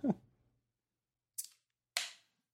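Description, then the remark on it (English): A cold beer can is cracked open: a dull knock, then two sharp metallic snaps, the last trailing into a brief fizzing hiss. No voices. “Here's a frosty one to you.”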